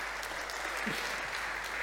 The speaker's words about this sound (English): So why don't we just welcome up with a little round of applause? Yes.